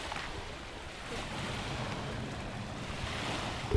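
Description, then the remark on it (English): Ocean waves wash in a steady, unbroken hiss, mixed with a low rumbling bed of passing traffic, recorded on the boardwalk in front of the police station in Alert Bay. No one speaks, and a brief bump comes at the very end. “we are on the boardwalk in front of the police station, just recording some waves and traffic.”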